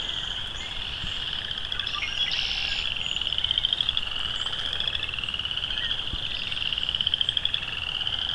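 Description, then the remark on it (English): A dense chorus of western chorus frogs trilling continuously across about a square kilometer of marsh, many overlapping rising calls forming a steady, pulsing wall of sound, with no voices. “A lot of chorus frogs. Probably western chorus frogs.”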